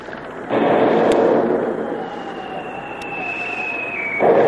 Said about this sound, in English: the submarine comes to the surface, not more than 1,000 yards away, and opened fire with its 3-inch deck gun, sending the first few shots screaming through the rigging to find the range.